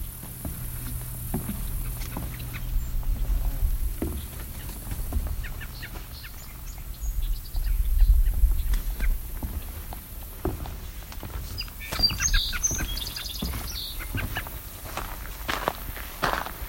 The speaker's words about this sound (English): Here goes the cedar waxwing.